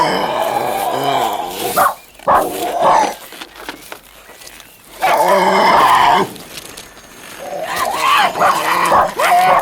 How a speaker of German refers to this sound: Tarzan, der Tiger! Schneller, der Tiger greift an!